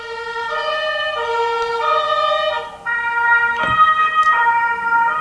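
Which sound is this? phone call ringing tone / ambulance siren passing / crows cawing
ambulance siren passing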